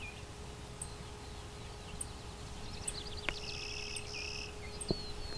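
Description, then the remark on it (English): Short, high tick calls from a female clay-colored sparrow with food in her mouth repeat about once a second, faint against a steady hiss, while another bird briefly sings thin tonal notes in the background. “So I've got, I think, a female clay-colored sparrow in front of me. Some food in her mouth, just ticking.”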